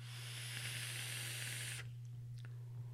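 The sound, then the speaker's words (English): A steady hiss of a vape coil firing during a puff on a Noisy Cricket mod with a Velocity atomizer and Drip Theory coils, lasting under two seconds before cutting off abruptly, with a low electrical hum running underneath throughout. “God, that's a good vape.”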